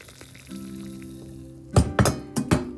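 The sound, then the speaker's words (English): A low steady hum, then four short splashy bursts as liquid pours from a small red teapot in quick spurts, fairly loud, with no talking. “With my new little tea wine, red little teapot. Now that, to me, my friends, is the sound of heaven.”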